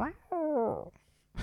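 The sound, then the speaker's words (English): A person lets out a loud, drawn-out imitation of a cat's meow, a single wavering tonal cry lasting about half a second, followed by a brief breathy noise. “Got to do a really loud meow off this one.”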